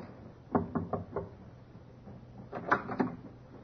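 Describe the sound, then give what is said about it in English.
Knocking on a cabin door: a quick series of four firm raps, a short pause, then another burst of three knocks, distinct with no voices. “Captain knocked.”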